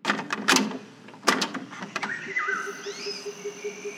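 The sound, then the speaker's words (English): The door to a department opens with a few sharp clacks and thumps, then a mechanical hum with rising and falling whining tones, like a motorized sliding door gliding open. “I'm just going to open the door to the department.”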